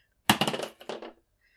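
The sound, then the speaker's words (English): Flame red wizard dice clatter and tumble across a hard surface in a quick burst of bright, rattling clicks, pause briefly, then skitter again before settling into silence, rolled for a performance roll in a game. “And she's going to roll a performance with the flame red wizard dice.”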